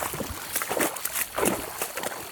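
Water sloshes and splashes in uneven bursts as someone wades off trail through a shallow river, up through a valley on a hot afternoon late in the year, each stride churning the current over a steady background rush.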